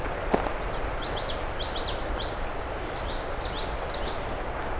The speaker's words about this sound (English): I feel like a lot of birds just arrived overnight and I just got here the right day to catch that first big day here.